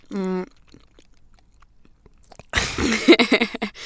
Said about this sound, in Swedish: Alltså förlåt, men du kan inte tugga. Inte efter men du ska prata. Okay. Förlåt, jag ska bara tugga klar.